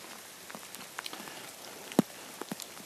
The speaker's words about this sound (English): I haven't got an inspirational quote, but I think I'm going to just leave it with the sound of the rain.